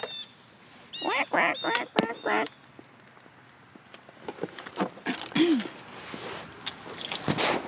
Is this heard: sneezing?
no